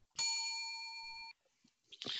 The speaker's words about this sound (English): Hit the bell.